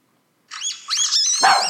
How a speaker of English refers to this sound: This is a baby sea otter squeaking.